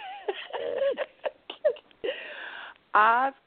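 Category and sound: human body sound, yawning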